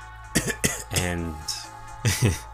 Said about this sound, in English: I'm going to push past the people and, like, step into the shop. It's a little dusty. You cough a little.